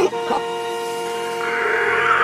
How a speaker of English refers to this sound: Janelle pounded the car horn, paralyzing the children as they shrieked in pain.